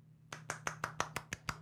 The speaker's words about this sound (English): Yeah, it's one of applause. Just one. It just goes on for a while. He can one hand clap.